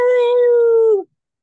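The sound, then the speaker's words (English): A person lets out a single sustained dog-like howl, loud, holding a steady pitch for about a second before it drops off and cuts to silence. “But I want to howl.”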